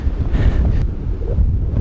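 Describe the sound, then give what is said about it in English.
Strong wind from a nor'easter storm roars and buffets steadily at the beach, a dense low rumble of gusts with wind pummeling the microphone and a faint hiss of surf beneath, no voices. “And now I'm going to go to the beach and really get a feel for how this storm is moving in.”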